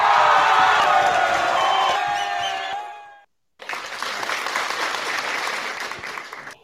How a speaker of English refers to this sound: We have the cheering.